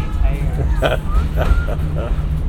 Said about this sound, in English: This train is like a rocking trip.